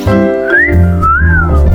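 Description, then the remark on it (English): A person whistles two quick sliding notes, each rising then gently falling, clear, over a steady low musical drone in the background. “Don't whistle.”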